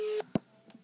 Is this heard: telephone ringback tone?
yes